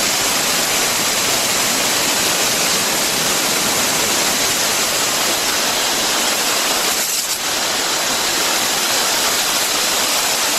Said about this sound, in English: So here's a video of me spraying. I do a foliar spraying. I spray the trees. I spray. This is a stone pine tree I'm spraying in Maui.